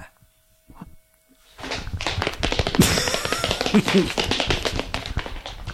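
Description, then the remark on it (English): A rapid run of sharp footfalls from a man running out back to a car, quick and steady, starting after a brief quiet stretch and continuing loudly to the end, with faint murmuring voices mixed in. “My brother runs so fast. Yeah, he sounds like a heavy guy, but he seems to be light on his feet there, kind of a dandy of sorts.”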